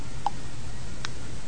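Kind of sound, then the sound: household object, clock ticking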